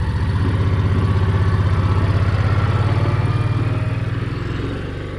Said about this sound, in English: Goldman starts up the little garden cart she uses round the farm to take us from the tomato field back to the farmhouse.